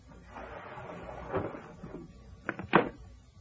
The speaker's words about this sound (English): Hours later, I was sitting in an easy chair in the corner of the dark room when I heard the window being forced.